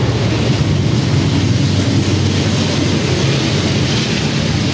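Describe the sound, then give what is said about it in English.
A loud, steady low rumble of a train passing by in Northeast Minneapolis, a continuous roar with rattling texture that holds without pause and no voices. “That there's a train here that goes through here.”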